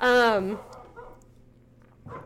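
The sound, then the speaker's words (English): A dog gives one loud, whiny bark that slides downward in pitch, followed by a quiet stretch with faint background noise and a soft rustle at the end. “Dog, man, this is going to be interesting.”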